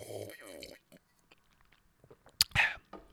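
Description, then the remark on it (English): A person speaks briefly, then after a quiet pause a single wet slurping sip of tea follows, with faint mouth clicks before and after. “Let me take a sip of my tea real quick.”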